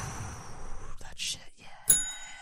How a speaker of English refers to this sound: Oh, I forgot about the bell.